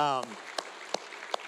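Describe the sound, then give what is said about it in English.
A lone person in a church audience claps slowly, four sharp, evenly spaced claps, following a brief bit of voice at the start. “And the one person clapping, we can join you in clapping with you about that.”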